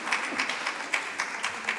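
An audience applauds, with many hands clapping in a steady, dense patter and a few sharper claps standing out, at a moderate level with no voices.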